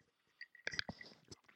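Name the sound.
sipping whiskey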